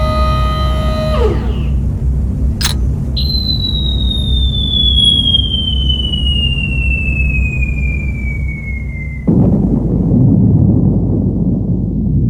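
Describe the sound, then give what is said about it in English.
A long, shrill whistle of the atomic bomb falling on Hiroshima, Japan, slowly drops in pitch for several seconds over a low rumble, then gives way to a loud, sustained explosion as it detonates 1,900 feet above the city in the morning, roaring on to the end. “43 seconds later, a huge explosion lit the morning sky as Little Boy detonated 1,900 feet above the city, directly over a parade field where members of the Japanese Second Army were doing their morning calisthenics.”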